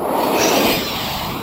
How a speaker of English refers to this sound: I mean, listen to this. Here we go again. All day long. It's amazing. Like, how many planes do they